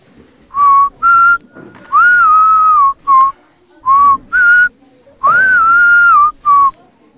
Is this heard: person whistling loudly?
yes